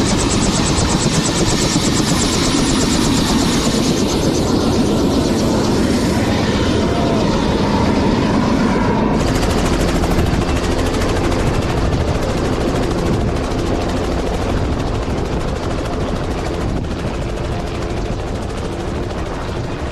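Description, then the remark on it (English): Loud, steady helicopter rotor noise fills the whole stretch, a dense rushing roar with a fast rhythmic chop, its tone shifting partway through; no one speaks. “You just got off the helicopter.”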